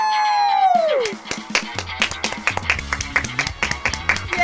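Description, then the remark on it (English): A falling, whistle-like whoop gives way to a few seconds of quick, sharp hand claps, loud and uneven in rhythm, with faint voiced sounds mixed underneath, as the show Worst Firsts signs off. “We just clapped for 20 minutes.”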